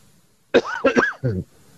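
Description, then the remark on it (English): A loud cough close to the microphone in three quick bursts, the last one rougher and throatier, with no talking and quiet all around. “Coughed right in your ear.”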